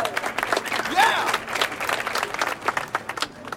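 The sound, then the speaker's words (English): An audience at a magic show claps steadily for a few seconds, a dense patter of many hands, with a brief whoop or cheer rising above it early on and murmured crowd noise underneath. “Can I get a round of applause for magic?”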